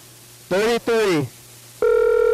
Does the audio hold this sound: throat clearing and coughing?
no